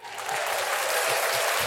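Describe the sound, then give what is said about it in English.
A burst of steady crowd applause played as a sound effect, many hands clapping together in a dense, even wash that swells in quickly and holds at a fairly loud level. “I got a more applause for that.”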